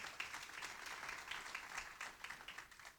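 Steady applause from a crowd, dense overlapping claps forming a continuous bright hiss with small rhythmic swells, sustained at an even level for the whole stretch with no voices on top.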